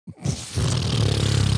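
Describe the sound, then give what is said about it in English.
A loud fart noise opens with a few sputtering bursts, then settles into a sustained, low, buzzy rasp that holds steady for about a second with no talking. “Fucking fart noise.”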